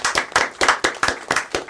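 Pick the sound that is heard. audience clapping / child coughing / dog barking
audience clapping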